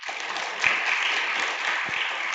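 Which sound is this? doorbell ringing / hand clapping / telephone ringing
hand clapping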